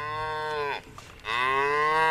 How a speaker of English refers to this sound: Cows are with me, milling about, and I hear them mooing.